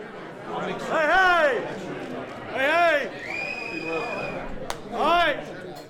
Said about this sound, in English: It's a crowded Friday morning at a restaurant on the Gainesville Square.